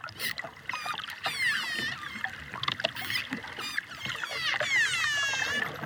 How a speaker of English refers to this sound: This is a noisy pod of dolphins, diving and calling to each other off the coast of Punta Allen in Mexico's Yucatan.